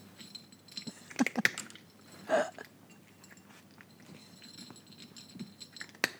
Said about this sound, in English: That's my favorite. That's a cat eating kibble. That's right. It's the cutest sound. It's such a cute sound.